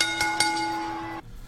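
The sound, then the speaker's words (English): A metallic bell is struck about three times in quick succession to start a match, its bright ringing tone sustaining for roughly a second before cutting off abruptly into quiet. “Ring that bell.”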